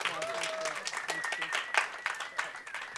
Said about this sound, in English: Yes, can we just give her a round of applause?